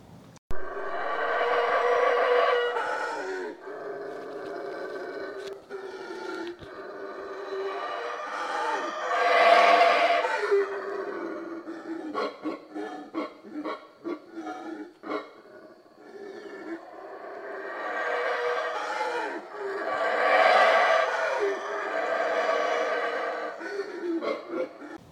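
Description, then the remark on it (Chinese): Howler monkeys roar at a Maya ruin site, in long, deep, surging waves, several overlapping bellows rising and falling over about 25 seconds, with no speech. The sound is rough, breathy and growling rather than shrill. “如果不跟你说，就完全感觉不到这是猴子的声音，是不是？”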